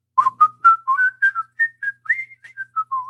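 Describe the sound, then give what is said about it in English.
A person whistles a quick, bouncy tune while shining shoes in a dressing room, a run of short clear notes stepping up and down in pitch with no talking. “And I'm shining my shoes and I'm whistling.”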